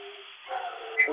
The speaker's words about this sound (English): Well, I certainly hope, God, my dogs are going crazy right now. Well, you get to hear all my menagerie going crazy. Hang on one second here.